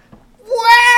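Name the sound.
cat meowing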